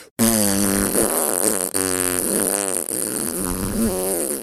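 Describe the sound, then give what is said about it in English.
A long, loud, buzzy fart sound, sputtering on for several seconds with a couple of brief breaks and changes in pitch, with no talking over it. “Yeti is literally farting. You think he's making that noise with his mouth? He's not.”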